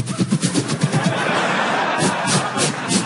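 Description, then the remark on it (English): Someone vocally imitates a lawn sprinkler with rapid, rhythmic hissing ticks, then a longer continuous hiss before the ticking resumes. The voice is fairly loud, with faint crowd noise behind. “And a lawn sprinkler.”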